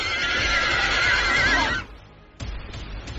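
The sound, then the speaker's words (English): A horse lets out a loud whinny with a shaky, wavering pitch for nearly two seconds. After a brief lull, softer clattering hoof sounds follow. “With a loud ruckus, he spun around, hopped on his chariot, and to my amazement, he, by the direction of the horses, flew into the sky.”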